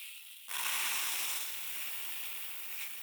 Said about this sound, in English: I'm going to pour this back into this bucket.